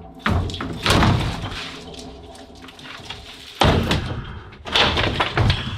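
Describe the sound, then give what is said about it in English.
Heavy blows from a 16-pound sledgehammer pound a door to break in, four loud impacts at uneven intervals, each a booming thud with a rattling decay. No one speaks. “We're gonna have to use the last resort, which was the 16-pound sledgehammer, as our first resort because we're running out of daylight.”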